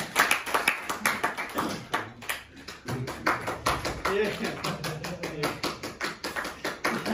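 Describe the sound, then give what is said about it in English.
An audience at a stand-up comedy show applauds steadily, a dense, crackling wash of many hands clapping at once for several seconds, with murmuring crowd voices mixed in beneath it. “Please stop clapping.”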